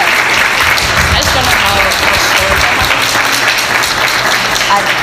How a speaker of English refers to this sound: Oh, everyone would like to clap. I see some people want to clap for our students. Thank you.